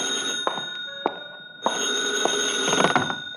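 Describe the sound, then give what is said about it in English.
A telephone bell in a phone booth rings loudly and steadily with a bright metallic trill, breaks off for a moment, then starts ringing again. No one speaks. “Where's your phone? In that booth over there. Hey, maybe that's your call now.”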